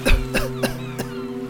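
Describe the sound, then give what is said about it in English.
A woman coughs four times in a row after taking a sip of water, the first cough loudest and the rest gradually weaker, each a short harsh burst, with a steady low hum beneath. “The woman took a sip of water and coughed.”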